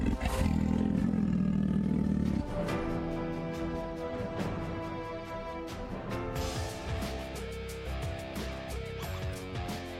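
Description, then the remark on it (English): A big jungle cat from Cougar Home Defense lets out a loud, deep, rumbling roar at the start, followed by several seconds of dense, rough growling and snarling sounds. “Cougar Home Defense sends your big-ass jungle cat with 24 hours worth of food.”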